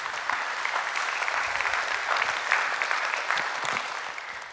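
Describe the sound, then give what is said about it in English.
Sustained audience applause for the joy of knowing the resurrected Lord, a dense, steady patter of many hands clapping at an even loudness for several seconds, with no voices standing out. “And today, yeah, you can clap for that.”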